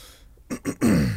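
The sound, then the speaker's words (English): A man clears his throat in a quick rasping sequence: two short gruff bursts followed by a longer, louder voiced rumble that trails off, with no talking. “Oh, he's clearing his throat.”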